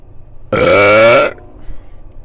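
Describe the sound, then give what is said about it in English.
A single loud, drawn-out burp lasting under a second, deep and harmonic with a raspy edge, followed by quiet room noise. “Hold up. I got a burp really bad.”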